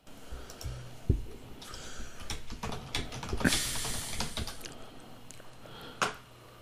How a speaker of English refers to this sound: I'm just sitting here clicking the refresh and continue buttons.